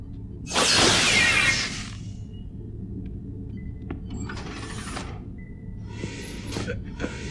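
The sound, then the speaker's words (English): A loud, sizzling blast from Kira's phaser strikes the panel of one of the doors on a space station with a crackling burst lasting about a second, followed by two softer hissing bursts and scattered clicks over a steady low hum. “So that she blasted the panel for one of the doors.”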